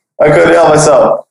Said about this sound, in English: So I guess we'll jump back in here because I just farted into the mic. Throwback. It was a throwback.